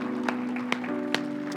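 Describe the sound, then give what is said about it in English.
A church audience claps in unison as praise to God, about four sharp, evenly spaced claps over a steady, sustained low musical tone, with a faint murmur of activity underneath. “Come on, give God a big hand clap of praise all over the house today, guys.”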